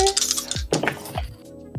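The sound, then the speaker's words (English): Red dice rattle and tumble across a hard surface, a quick cluster of sharp clicking impacts that scatter and settle within a couple of seconds. “Pulling out the red”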